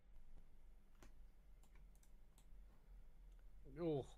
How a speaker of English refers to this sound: Oh, I can't get over how nice those new D&D fuzzy dice sound. It genuinely sounds like someone's just like hit a microphone with a bit of felt, but like really sexily. Is that on D&D Beyond? D&D Beyond, the new felt, the new like pink felt dice.